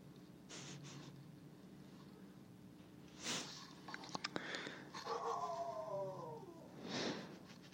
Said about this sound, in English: I like how the dog just, like, sleeps, and all of a sudden she, like, wakes up, starts barking. It is really fascinating how that dog's mind works.